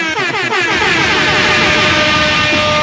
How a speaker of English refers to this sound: Let me just give him a couple air horns on that.